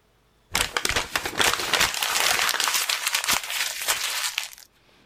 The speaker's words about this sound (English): It first heard the sub's implosion hours after the craft began its journey, according to the report. Now, we have actually gotten the audio from what was heard, and we'd like to submit it for you now.